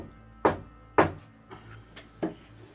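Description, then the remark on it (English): Knocking on the door to a room in the Haven, not the front door: two firm, hollow knocks about half a second apart, then three softer, unevenly spaced taps, with no voices. “It's not coming from the front door, but it is coming from your room. The door to your room.”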